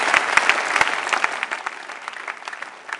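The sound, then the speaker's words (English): A crowd claps their hands for the Lord Jesus, with dense overlapping hand claps forming a continuous applause that stays fairly loud throughout, a few sharper individual claps standing out at the start. “Clap your hands for the Lord Jesus.”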